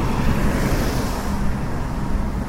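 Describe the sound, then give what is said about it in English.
Steady street traffic at a bus stop where people wait for a bus: a continuous low engine rumble with a broad wash of road noise, fairly loud and even throughout, with no voices. “Well, look, there's the guy I call the similar man, the bus stop. Is this our bus?”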